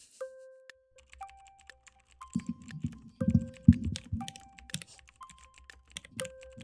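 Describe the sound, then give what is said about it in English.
Rapid clicky keystrokes from a mechanical keyboard, fairly loud, typed in quick uneven bursts, with soft electronic chime tones sounding in the background. “ASMR mechanical keyboard.”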